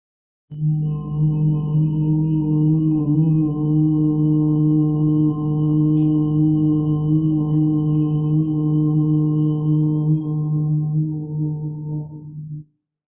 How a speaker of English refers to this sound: And let's take a moment and hum together till we feel that vibration.